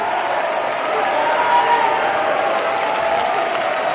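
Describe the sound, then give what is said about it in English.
A large audience claps and cheers steadily, a dense wash of many hands and raised voices that holds at an even, fairly loud level throughout. “Come on, clap your hands. Clap your hands.”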